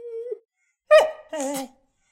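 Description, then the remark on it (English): A person imitates a whining greyhound nosing someone: a thin, steady whimper, a pause, then two louder nasal whines with a wavering, slightly falling pitch. “I think at least one of them is whining and nosing Adjurine the way dogs do.”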